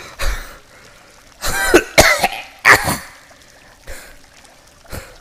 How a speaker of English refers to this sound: Oh my god. She's coughing up water.